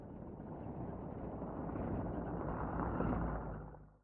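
A deep, throaty car engine rumbles steadily outside the window of a house, swelling slightly louder before quickly dying away at the end, with no voices present.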